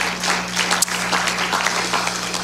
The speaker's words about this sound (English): If you believe it, can you clap your hands unto the Lord? Amen.